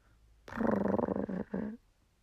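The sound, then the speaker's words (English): A cat purrs gently, a low, rough rumble lasting just over a second with a brief break before a final short burst, then silence. “Stubby cocked his head slightly to the left and gave a gentle purr”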